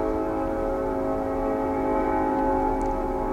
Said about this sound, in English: A train is coming. There's a lot happening right now.